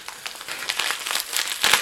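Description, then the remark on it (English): Bubble wrap crinkles in a steady stream of dry, crackly plastic rustling, with scattered sharper snaps that build louder toward the end. No one speaks. “Oh, this is bubble wraps.”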